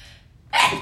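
A quiet intake of breath gives way to a single sudden, loud sneeze, a sharp burst that stands alone with no talking.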